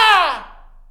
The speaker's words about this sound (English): But literally you're screaming.